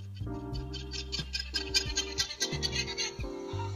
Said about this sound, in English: I wanna know what llamas sound like. Llama alarm call? Wait, what?